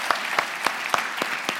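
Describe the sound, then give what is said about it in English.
An audience applauds the worship team, a dense, steady wash of clapping from many hands with a few sharper claps standing out at a regular pace. Moderately loud, with no talking over it. “But I wanted us to give kind of a quick round of applause to our worship team for learning that for today.”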